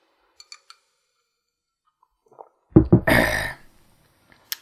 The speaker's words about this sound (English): I'm taking another sip of my lime water and ice drink. Yeah.